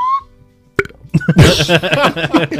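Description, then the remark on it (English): A brief high tone, a short pause, then a loud, drawn-out burp rising up the throat, rough and gurgling, lasting nearly two seconds. “The sound of the burp coming up.”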